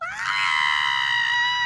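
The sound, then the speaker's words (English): A person imitates a goat with one long, loud, high-pitched bleating cry that rises at the start and then holds steady, strained and nasal, for nearly two seconds. “Oh, I would get you with my goat.”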